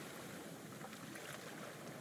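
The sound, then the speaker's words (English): A steady, rushing wash of ocean waves, even in loudness throughout, with no distinct single break standing out and no voices present. “As you walk back along the footpath you came in on, the sounds of the ocean gently fade away until all you can hear are your eager footsteps taking you to where you will get a good night's sleep.”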